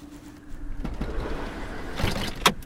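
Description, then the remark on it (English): People climbing into a big car: shuffling and rustling over a low engine-like rumble, ending with a single sharp thud of a door shutting. “Yeah, cool you're getting to know each other, but can we continue this inside the car?”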